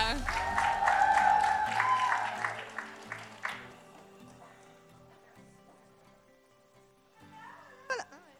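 A conference audience claps and cheers loudly for a speaker being introduced, with shrill whoops and sustained tones over the first few seconds, then the applause thins into softer scattered clapping before a brief sharp sound near the end.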